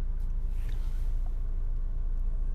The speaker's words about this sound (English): I'm just sitting in my car talking right now.